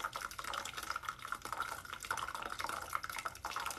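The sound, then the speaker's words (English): Boiling water is poured steadily over the outside of a container of oil to melt the oil, a continuous soft splashing trickle with faint drips, fairly quiet, with no one speaking. “I'm pouring it safely.”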